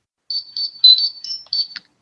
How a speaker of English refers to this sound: Wait, let's see mine. All right, here's my ringtone, obviously.